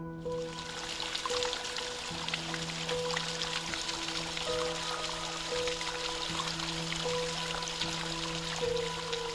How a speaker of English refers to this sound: Right, see there, where the water is dripping over the lip of the cave. That's known as the petrifying well.